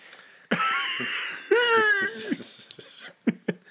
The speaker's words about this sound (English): I was doing a good job of stifling these coughs for the most part, but now it's just all unleashed. Yeah, he sounds like you. Sounds like you got that smoker's cough.